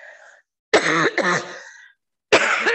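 A person with a recurring seasonal cough coughs and clears their throat in loud bursts: one rough double hack, a pause, then another harsh cough, with a faint breath or murmur at the start.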